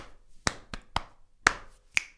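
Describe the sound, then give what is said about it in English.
Hands drum on the player's own chest in five sharp slaps with an uneven rhythm, a quick pair followed by more spaced hits, with no talking. “I mean, the only sort of instrument I can kind of play is my own chest.”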